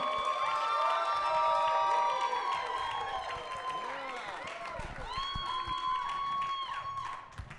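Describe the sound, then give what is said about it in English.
A large audience at a show claps and cheers steadily, with whoops and shouting voices layered over dense applause that stays loud and sustained throughout. “Keep clapping while you're at it, right? Make some noise for”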